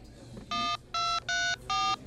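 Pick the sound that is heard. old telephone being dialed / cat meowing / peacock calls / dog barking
old telephone being dialed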